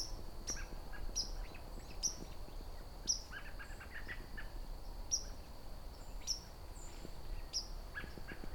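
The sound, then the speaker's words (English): A white-throated sparrow gives a series of sharp, high pink calls, about eight short notes at irregular intervals, clear over a steady outdoor background hum. “That pink kind of call, or a peep, however you want to pronounce it.”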